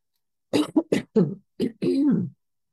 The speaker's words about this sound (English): because I'm going to have to clear my throat. Okay. I'm getting scratchy.